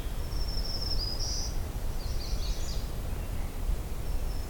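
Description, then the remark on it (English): A magnolia warbler sings two short, high, sweet phrases, faint against a steady low outdoor rumble, with no voices present. “Somewhere in here, magnolia warbler again, just like last night.”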